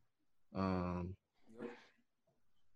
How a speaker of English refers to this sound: I hope I can hear my dog barking. I could barely tell.